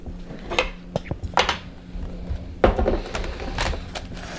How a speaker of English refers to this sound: And then we need to cut an avocado, right? Yes. Okay. So let me get a knife and a cutting board.